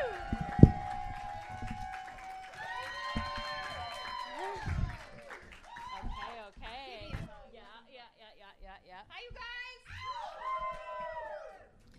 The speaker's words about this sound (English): But in the meantime, start clapping right now, everyone,